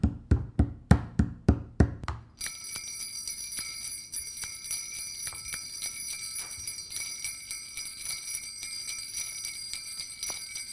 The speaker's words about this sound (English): Now the bell is ringing.